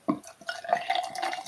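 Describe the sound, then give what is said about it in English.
Fizzy Red Hen craft cider (6.2%) from Shepton Mallet pours into a glass: a sharp splash onset, then a steady liquid stream with a bright rising tone and busy crackling fizz throughout, no voices. “Fizzy. Very fizzy. I can hear the fizz.”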